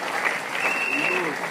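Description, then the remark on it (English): An audience in church clapping and singing together in a steady, dense wash of applause that holds at an even level throughout, with faint voices rising and falling beneath it. “Are you clapping and singing?”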